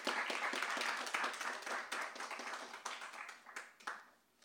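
A crowd breaks into a round of applause, dense overlapping claps forming a steady bright wash that gradually thins and fades out over a few seconds.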